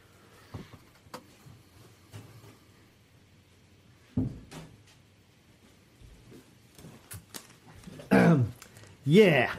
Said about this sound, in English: Hold on. I have to shut the door.